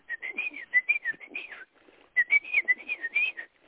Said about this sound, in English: This was a Carolina wren.